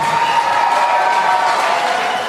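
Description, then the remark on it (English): A crowd cheering sound effect, played for a correct answer in a quiz. A dense wash of many voices cheers loudly and steadily for a couple of seconds, with whoops and a bright, sustained roar that tapers slightly at the end. “So just cheering for the correct answer and the foghorn for the wrong answer.”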